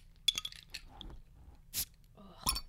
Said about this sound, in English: Ooh, it's a pop top. Quick little break while we can think. And also, we're going to open up another flying dog.